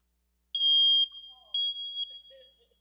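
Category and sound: household object, smoke detector chirping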